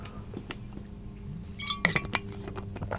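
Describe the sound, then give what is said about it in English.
Glass clinks against something a few times in a quick, uneven cluster while someone gets a glass of water, bright and ringing, over a low background rumble with faint handling noises; no one speaks. “oh my gosh, I need a glass of water. Give me 1 second.”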